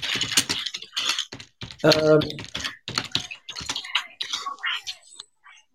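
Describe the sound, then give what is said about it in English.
Heavy, rapid typing on a computer keyboard, a dense clatter of loud keystrokes, with a brief murmur of voice partway through. “I thought there was a horse on a keyboard.”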